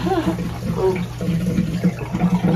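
Water sloshes and laps steadily in a tub of hot water in Cape May, a continuous churning wash with faint murmuring voices mixed underneath.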